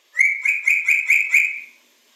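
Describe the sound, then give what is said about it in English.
A talking grey parrot kept in a house gives a loud call of about five quick, buzzy whistled pulses in a steady rhythm, then falls silent. “Could you imagine a gray parrot in your home chastising you?”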